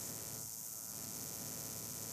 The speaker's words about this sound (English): Could you stop trying to get energy from the equipment? It's affecting their reporting on all of you here at Point Sur. Would you mind stopping the static?